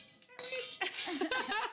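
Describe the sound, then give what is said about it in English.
Champagne glasses clink together in a final toast in Atlanta, Georgia, United States. A sharp strike sets off a bright, high ringing tone that lingers as voices murmur over it. “Refilled my champagne for our final toast.”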